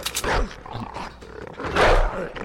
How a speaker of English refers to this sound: Oh! The wolves are back. Oh shit. The wolves, watch them win.